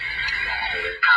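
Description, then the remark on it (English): Hissing radio static from a scanning ghost box, steady and fairly loud, with faint warbling tones, then an abrupt jump to a brighter, harsher burst as it switches channel. No one speaks. “Okay, well, we completely lost our ghost radio feed.”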